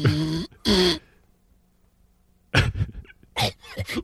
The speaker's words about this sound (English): he has sleep apnea, and he has, I'd say, a pretty serious case of it.